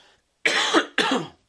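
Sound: cough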